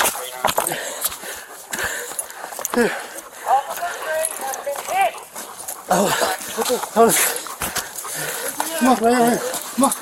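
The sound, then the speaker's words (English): A police dog barks repeatedly and excitedly, loud, its sharp barks overlapping with people talking and shouting in a busy, noisy outdoor scene. “Hold on, let me get my dog so he doesn't bite anybody.”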